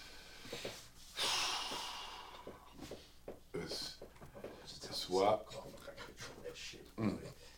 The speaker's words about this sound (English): Chill with all that coughing